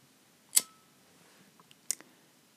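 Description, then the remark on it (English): Two sharp metallic clicks about a second and a half apart as a lighter is flicked to light a hemp wick, fairly crisp, followed by a few faint ticks. “If my hemp wick would light, that would be fabulous.”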